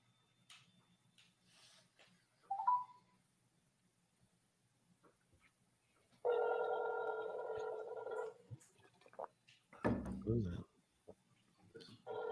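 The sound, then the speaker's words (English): A phone call rings out unanswered with a single steady electronic ringing tone lasting about two seconds, moderately loud, surrounded by faint clicks and a short rough burst of noise afterward. “People picked up the phone. That doesn't seem to be happening for Steve here”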